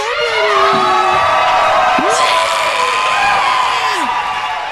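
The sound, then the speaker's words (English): A loud crowd cheers and applauds continuously, with many voices whooping and yelling in sweeping, rising and falling shouts over a dense wash of noise for the whole stretch. “I am triggered by that applause.”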